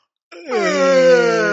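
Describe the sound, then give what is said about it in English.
A voice imitates a loud, drawn-out yawn: one long, voiced groan that starts after a brief silence, dips slightly in pitch, then holds steady and strong until it cuts off. “Or constant yawning? Yawning, just oh, loud like that too?”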